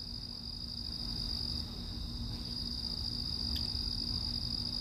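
Crickets chirp in a steady, high-pitched trill that carries on without a break over a low rumbling background, with no voices.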